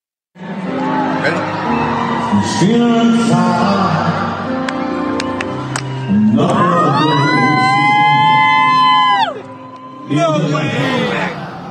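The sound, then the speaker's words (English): Bystanders at a singer's concert at Rogers Arena cheer and shout together as a man gets down on one knee and proposes during the encore, with excited whoops and a long, high-pitched shriek rising above the din midway, briefly dipping before the loud cheering resumes. “Bystanders cheering.”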